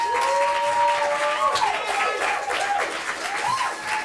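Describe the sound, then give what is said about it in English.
An audience applauds steadily for about four seconds, a dense, even wash of clapping with thin, sliding whistle-like tones rising and falling above it. “Can we have a few rounds of applause?”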